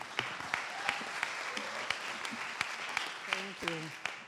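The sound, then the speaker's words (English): An audience applauds for a speaker about to give a testimony, a steady wash of clapping with a few sharper individual claps standing out, while voices call out and cheer faintly underneath. “Why don't we give her a round of applause?”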